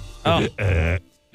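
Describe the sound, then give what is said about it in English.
Someone vocally imitates hiccup burps: two loud, throaty, croaking bursts, the second one longer, with a brief gap between them and quiet afterward. “Mine are always bad. I never get those little guys. I get hiccup burps.”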